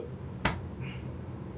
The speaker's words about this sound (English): Hiccup, my bad.